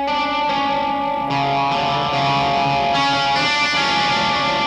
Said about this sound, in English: Rhythm guitar too, which for me is a very subtle chorus.